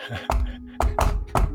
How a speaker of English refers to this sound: We'll do our secret knock. Ready? It goes like this. So when I do that, that means it's safe, okay? Okay, ready?